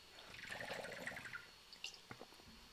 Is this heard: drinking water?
yes